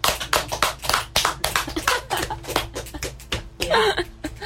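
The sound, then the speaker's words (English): A small group of people in the studio claps steadily and irregularly for several seconds, the crisp handclaps overlapping at a moderate volume, with a faint low hum beneath. “Big hand for yourself.”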